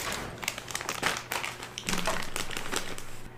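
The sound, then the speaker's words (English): Someone munches popcorn, with a steady run of dry, crisp crunches and crackles, fairly loud, with no talking over it. “I'm gonna munch on the rest of this popcorn.”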